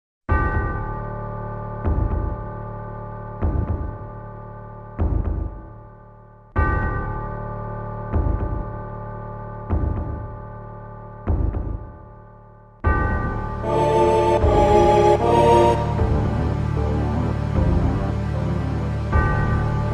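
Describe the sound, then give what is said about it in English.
Sephiroth's character theme from a video game, slow and ominous: deep, bell-like tones strike in a steady, heavy pulse, then the music swells into a fuller, denser and brighter layered passage for the remainder. “This theme is slow, ominous, foreboding.”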